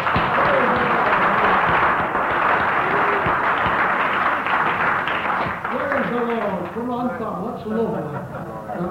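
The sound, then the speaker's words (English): An audience at a meeting claps steadily for two brothers who have come up to give a quick testimony, a loud dense patter of many hands that gradually thins out as voices rise and begin talking over the last few seconds. “Give them a clap.”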